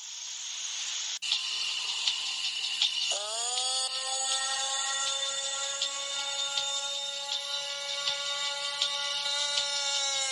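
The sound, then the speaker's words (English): A person imitates a Bigfoot call: after a few seconds of steady hiss, a single long, sustained howling tone rises slightly in pitch and holds to the end, with no talking. “That's actually a person calling for Bigfoot.”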